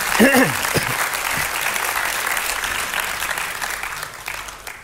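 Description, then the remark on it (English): An audience breaks into steady, sustained applause, a dense wash of many hands clapping for several seconds, with a brief voice or shout at the start that fades into the clapping. “That deserves a clap from God for God.”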